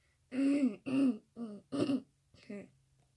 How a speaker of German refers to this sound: Also, ja, hust, hust.